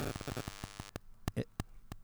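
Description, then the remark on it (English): Rhythmic bursts of electronic static from a phone placed on audio cords buzz over a low hum, pulsing rapidly at first, then turning sparse and irregular; fairly loud, with no speech. “If you put that phone on the cords, it creates a bit of static.”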